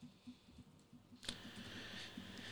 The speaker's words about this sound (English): over here typing up a storm. I'm curious what we're gonna be posting on the website here shortly.